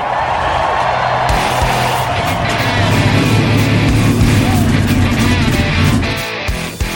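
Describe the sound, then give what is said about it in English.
A loud, dense roar of several race car engines firing up and revving together on the command to start engines, holding steady at full volume for several seconds before easing off near the end. “Cars, start your engines!”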